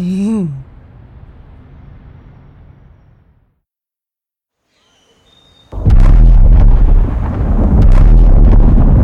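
After a hush, a sudden, thunderous sonic boom bursts in close and loud, its deep rumbling roar sustaining for several seconds.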